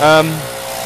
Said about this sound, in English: It is a leaf blower. Although, and they are indeed blowing leaves.